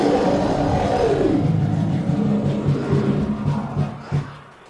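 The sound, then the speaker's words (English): A loud, angry bear roar sound effect, the "angry Poughkeepsie primetime bear" played at a stage show when a performer's 60 seconds are up, rumbles for several seconds, its growling pitch sliding downward early on, then a rough sustained snarl that swells once more before fading out. No one speaks. “That means wrap it up then, or else you're going to bring out the angry Poughkeepsie primetime bear.”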